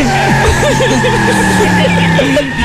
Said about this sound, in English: Give me some screeching tires, Darkseid.